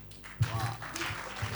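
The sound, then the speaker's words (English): An audience claps together in a dense, steady wash of many hands, starting with a sharp burst and continuing briefly, with voices mixed in underneath. “Oh, look at the way you are clapping.”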